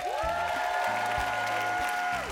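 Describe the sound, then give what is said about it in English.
A live audience at a comedy show, those over the age of 25, claps steadily in a dense, sustained burst, with a long, high whistle ringing out over the noise before trailing off. “All right, round of applause if you are over the age of 25.”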